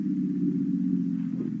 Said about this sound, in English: The car turns up the tree-lined driveway.